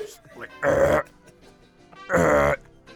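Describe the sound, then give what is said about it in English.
A voice imitates burping, producing two loud, drawn-out belch sounds about a second and a half apart, each lasting under half a second, with quieter vocal noises in between. “Then she'll walk away for one reason or another, and he'll just start burping.”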